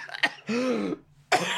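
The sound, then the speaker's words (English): Three harsh coughs in quick succession, loud, with a raspy throat-clearing quality and short gaps between bursts. “Well, I think that you need to leave the coughing in.”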